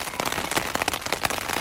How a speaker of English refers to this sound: And just like that, something else I can't control, it starts to pour rain.